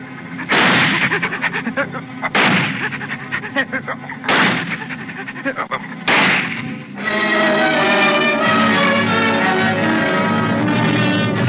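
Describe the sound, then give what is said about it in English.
Four loud gunshots ring out about two seconds apart, each blast trailing off in a long reverberant decay, before a steady, sustained tonal drone takes over. “I pointed the gun right at her head.”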